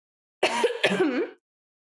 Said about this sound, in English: Hold on one second. I'm going to do a little weed cough and take a sip of water